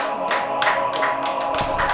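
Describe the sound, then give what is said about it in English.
A smattering of applause: a few scattered, uneven hand claps, about eight sharp bright slaps over two seconds, moderately loud and with no voices. “This was …, and a smattering of applause, because that's all that could happen at this point.”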